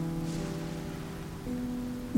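rain

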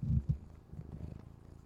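cat purring near microphone

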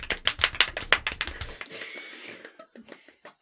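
golf clap

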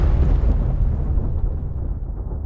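storm with thunder

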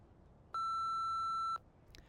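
answering machine beep

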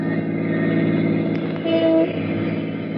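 car driving

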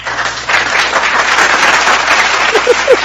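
soundboard applause sound effect

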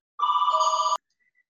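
telephone ringing

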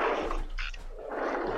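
dogs barking

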